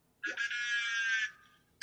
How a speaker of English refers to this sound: Blue whale right there.